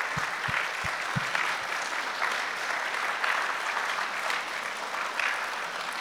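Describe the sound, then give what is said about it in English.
A large church audience applauds steadily for the hospitality team volunteers, a dense wash of clapping at an even loudness throughout, with a few louder claps near the start. “And can we give them a big round of applause?”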